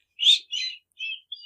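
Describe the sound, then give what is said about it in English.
Someone imitates a cricket chirp with four short, high-pitched trilling bursts in an uneven rhythm, the first loudest and the later ones fainter and thinner, with no talking. “Let's a little hear your bit. Cricket sound. Ooh, that was pretty good.”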